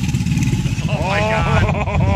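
A deep, loud alligator mating bellow rumbles continuously, low and throaty like an idling engine, while a higher wavering tonal sound rises over it during the second half.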